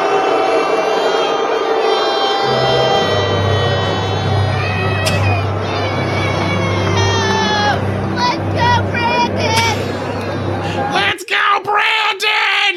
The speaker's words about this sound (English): But here you go. Here is Joe Biden being booed.